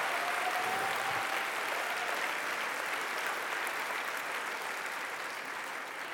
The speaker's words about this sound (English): Come on, give the Lord a clap of praise today.